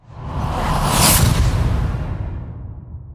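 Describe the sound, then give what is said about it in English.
A single broad whoosh sound effect swells up, peaks sharply about a second in, then trails off into a long, fading rush of air. It's loud, with no voices. “Do you want to insert a whooshing sound effect here?”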